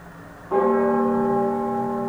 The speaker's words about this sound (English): The darkness is eternal without beginning or end until in the void there is the sound of a bell.